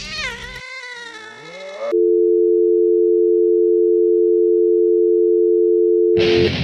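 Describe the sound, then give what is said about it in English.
Cats yowl and caterwaul loudly for about two seconds, their wavering cries rising and falling, then abruptly give way to a long, steady electronic tone that ends in a brief burst of noise. “All right, these cats. Get these cats out of here.”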